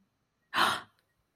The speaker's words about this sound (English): are just sort of gasping at one another and covering our mouths. Shock. And pantomiming various stages of shock and awe.